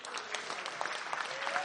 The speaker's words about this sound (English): Why don't we give them a cheer?